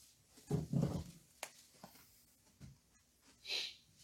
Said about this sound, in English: Galatians chapter 5, beginning with verse number 16. I hear pages rustling. I'm going to give you a minute or two longer to find it.